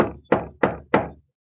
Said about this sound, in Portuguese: Concordando os oficiais da Câmara em que se deve requisitar o precioso móvel por empréstimo ou aluguel, dirigem-se à casa do homem três vereadores. Batem à porta.